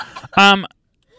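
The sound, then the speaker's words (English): A single loud, exaggerated cough with a strong honking, voiced tone, brief, preceded by a short breathy rasp and followed by quiet. “Listen, I do want to know, would you cough so disrespectfully like this is your wedding?”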